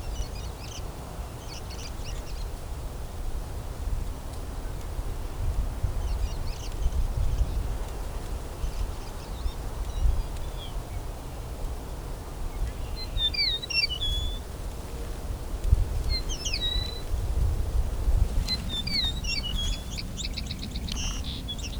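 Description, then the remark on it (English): Two male birds right next to each other trade sharp, chirping calls in short bursts over a steady low rumble of wind and outdoor noise, the calls moderately loud, with no one speaking. “Oh, there's its call. One of a couple different calls they do.”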